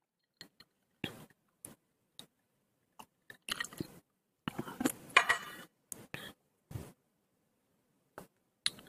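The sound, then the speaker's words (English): Someone sipping tea from a cup: scattered short clicks and wet mouth sounds, with a denser, noisier stretch of slurping in the middle. Quiet overall, with no talking. “Sips tea again.”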